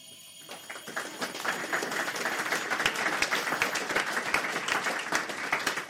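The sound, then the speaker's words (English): An electric bell rings while air is let back in around it, with a rapid, buzzing clatter that begins faint and grows steadily louder as the seconds pass, with sharp clicks punctuating it toward the end. No voices. “So then if I press the bell while you're letting the air back in, we should be able to hear it starting to get louder.”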